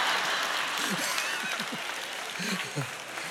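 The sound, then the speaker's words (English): An audience applauds steadily throughout, a dense, continuous patter of clapping hands at a fairly loud level, with a few voices calling out beneath it. “Why'd y'all clap for my wife and not my children?”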